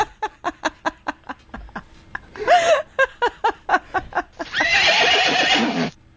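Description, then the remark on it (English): A person imitates a horse with a rapid series of clucking clip-clop beats, a wavering whinny in the middle, then more clops and a long, loud, breathy neigh at the end. “Wait, why did you do the horse sound?”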